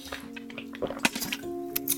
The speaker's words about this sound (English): And let me take a quick sip.